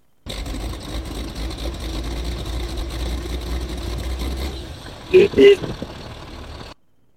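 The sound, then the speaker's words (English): A truck engine, Jason's truck in a YouTube video by Smoking Motors played on a stream, idles with a steady, low rumble for several seconds, then two short, louder bursts like quick revs rise near the end before the sound cuts off. “Jason's truck.”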